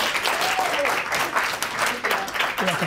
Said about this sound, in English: Please give me a huge round of applause for my friend Gary Vee.